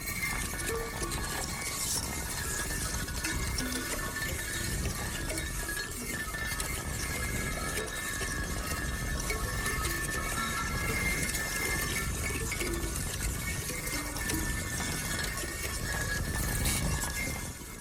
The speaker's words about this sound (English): Yannis Xenakis' La Légende d'Air is one such example, in which a 7-channel electroacoustic audio track combines instrumental sounds, electronic sounds, and noise to envelop the listener, as if they're in the middle of the ocean.